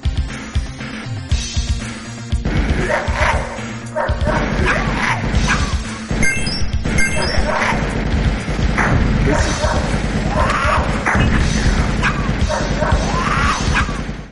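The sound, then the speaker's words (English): Many dogs yelp, bark and whine almost nonstop in a clip of the arcade shooter game Beast Busters, over a loud, busy background of clattering electronic game sounds and music, with occasional crashes, steady for the whole stretch. “There are a lot of dogs screaming in that clip.”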